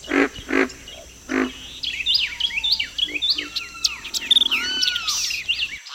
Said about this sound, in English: By this time, other birds have awakened, and Carolina wrens and white-eyed vireos are declaring their territories.